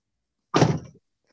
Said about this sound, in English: What was that? Just slammed my door there. The light, like, turned off in the truck, and I was like, oh, shoot, I need to close the door. So I just, like, slammed it shut.